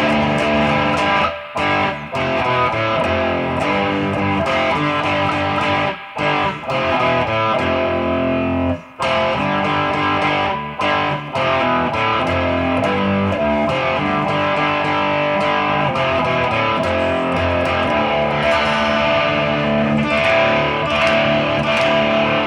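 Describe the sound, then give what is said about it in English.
A heavy, distorted electric guitar riff, tuned down a whole step to D, with thick sustained D chords ringing out, broken by a few brief stops before the riff crashes back in, loud and continuous throughout with no voices. “You kind of have like that, you know, ringing in that D chord, right? So when you play the riff, it sounds really kind of heavy, right?”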